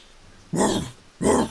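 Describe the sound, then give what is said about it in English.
Two short, rough dog-like growls from a man in quick succession, fairly loud, each a gruff burst lasting under half a second with a brief pause between them. “He growls, and you hear a lot of growls around you as well.”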